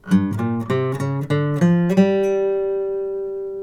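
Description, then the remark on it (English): A short guitar phrase of about seven notes, each one picked individually without hammer-ons, with a crisp attack in a quick even rhythm, ending on a sustained low note that rings out and slowly fades. No talking. “And here's the sound if you don't use hammer-ons.”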